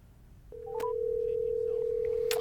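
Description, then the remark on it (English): A phone call being placed: a few quick electronic beeps and a click, then a steady, unbroken line tone that holds to the end, ending in another sharp click. “We're going to call him up.”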